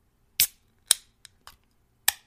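A can of Trader Joe's cranberry lime seltzer water being cracked open: a handful of sharp, bright metallic clicks and pops spread over a couple of seconds, each trailing into a brief fizzy hiss, with no talking.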